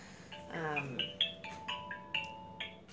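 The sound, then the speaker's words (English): A phone ringtone for an incoming call plays a quick, bright melody of high electronic beeps repeating in a steady pattern, with a brief murmur of a voice early on. “She's calling me to pick up my dog crate at work.”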